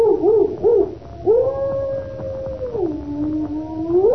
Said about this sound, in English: Listen to that dog. He's in an ugly temper.